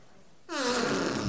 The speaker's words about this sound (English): This is your good old standard fart. It's the one at the top.